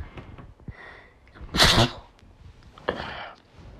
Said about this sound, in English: Sorry. I had to take a fucking sneeze. I hate how fucking rapid those sneezes fucking go, man. And like, every time you sneeze now, you're fucking nervous about COVID and shit.